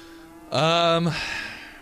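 A single short cow moo, loud, lasting about half a second with a slight downward slide at the end, followed by a fainter trailing tone over a low steady background hum.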